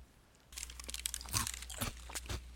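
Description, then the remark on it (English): Crisp crunching of a crunchy snack being chewed, a quick series of irregular crackly bites over a faint low hum, with no talking. “Oh, I'm so sorry, I should have offered you some. What am I chewing?”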